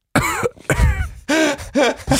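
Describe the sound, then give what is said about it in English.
A person coughs about five times in quick succession, loud, with short gaps between the raspy, throaty bursts and no talking. “Like when you're in church and someone's coughing.”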